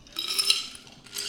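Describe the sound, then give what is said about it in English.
Bright, tinkling clinks of ice against glass, a cluster of sharp high-pitched taps in the first half, then another short rattle near the end, with no voices. “Is my ice coming in super loud?”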